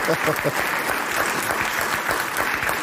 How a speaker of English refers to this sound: So whoever it is that like is immediately clapping after Bill says that, you can tell that's either Bill's showrunner or that's a Jewish guy.